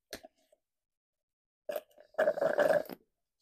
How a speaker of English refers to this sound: Hold on, taking a sip of the slurp.